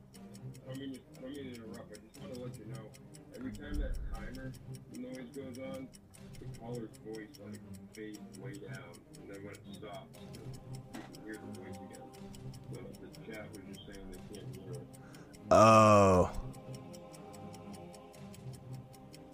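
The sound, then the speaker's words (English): A countdown timer ticks steadily and quietly beneath people talking, its even clicks running through the whole stretch, with a brief loud burst of sound near the end. “It goes right with that timer for some reason.”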